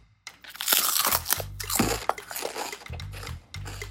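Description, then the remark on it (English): A loud crunch of biting into a classic potato chip during a taste test, followed by a run of brittle crackling and chewing noises with low thumps, no talking. “It's crispy because when you bite in it, it's like makes your high-pitched sound at the beginning.”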